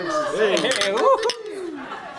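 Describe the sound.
A few sharp glass clinks ring out, overlapping with several people talking and cheering at once, as in a toast.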